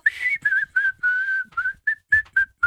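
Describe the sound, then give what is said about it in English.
Someone imitates a whistling nose while breathing, with about nine short, thin, high whistles in a quick uneven run, fairly loud, with faint breathy noise between them. “I wonder, is it a nose whistle? So when they're breathing... It just does that little whistly noise.”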